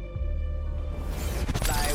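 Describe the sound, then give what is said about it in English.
A loud, bright burst of breaking glass crashes in about halfway through, with sharp cracking fragments, after a sustained tonal, humming passage that sounds like a film soundtrack. “You see the... where the glass shattered?”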